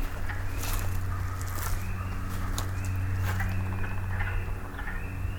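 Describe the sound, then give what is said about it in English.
A frog chorus of spring peepers, chorus frogs and wood frogs: faint, repeated rising peeps over a steady low rumble and scattered clicks, with no one talking. “Spring peepers, chorus frogs, and wood frogs, I think.”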